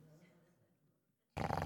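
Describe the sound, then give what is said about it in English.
A voice imitates loud snoring: a quiet, low rumbling rasp, a brief pause, then an abrupt, harsh, very loud snort-like blast that fills the last stretch. “Like a chainsaw. He's snoring.”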